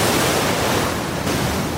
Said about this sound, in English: So the white noise is waves crashing, which scares me.